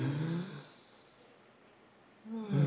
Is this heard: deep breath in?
yes